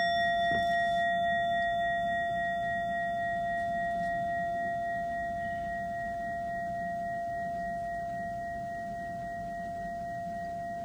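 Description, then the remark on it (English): A Japanese temple bowl gong is struck once, and its clear, layered ringing tones hold steady and slowly fade over about ten seconds, with no voices. “This is a Japanese temple gong that, a bowl gong, that, like all gongs, are designed with a long decay.”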